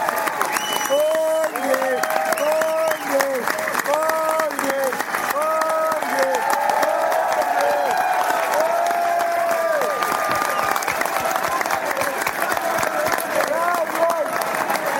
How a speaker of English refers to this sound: And Bunliaki's going to get a big cheer here as he got point of the match.